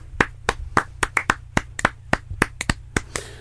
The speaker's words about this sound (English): Can we just have a quick round of applause for Sky Sports?